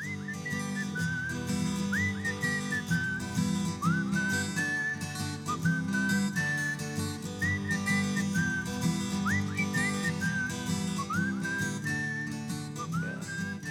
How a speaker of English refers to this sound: Yeah, and then for this song, I did a whistling. Oh right, okay. Whistling thing, yeah, yeah.